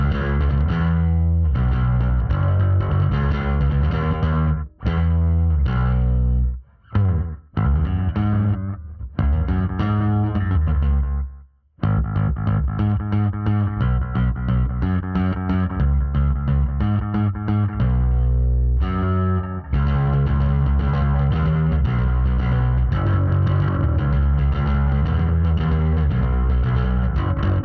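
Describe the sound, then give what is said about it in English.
A bass guitar played through effects pedals, its thick distorted, chorus-laden tone riffing loudly, with a few brief pauses and no voices. “So if you're going to use these effects on bass”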